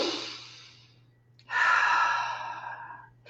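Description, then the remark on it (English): A deep breath: a long airy inhale that fades out, a brief pause, then a fuller, louder exhale like a sigh that slowly tapers off. No talking. “But people who practice yoga say that they can take these techniques with them off the mat and they find themselves just breathing, like, you know what?”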